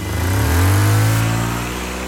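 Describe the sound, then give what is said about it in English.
A sedan's engine revs up, its low rumble climbing in pitch and then settling as the car pulls away from the curb outside a church, loud and continuous with no voices. “Two Gestapo agents dressed with long black leather trench coats came in, snatched him and dragged him to a waiting sedan that was idling at the curb outside of the church and took him to Gestapo headquarters in the First District.”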